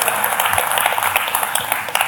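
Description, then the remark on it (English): An audience claps steadily, a dense crackle of many hands at an even loudness for about two seconds, with no one speaking over it. “Yeah, you could applaud for that.”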